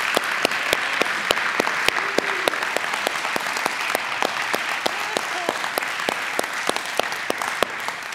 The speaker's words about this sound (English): So can we just applaud these ladies?